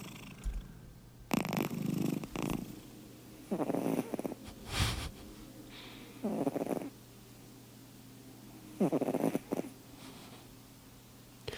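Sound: cat snoring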